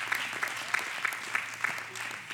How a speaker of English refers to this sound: Can somebody give him a round of applause? Thank you so much.